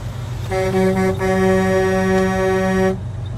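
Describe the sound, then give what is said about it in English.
A loud, sustained truck horn from a long convoy of trucks blares for about two and a half seconds, briefly faltering near the start, over a steady low engine rumble, with no one speaking. “I'm just in awe of this big, long line of trucks.”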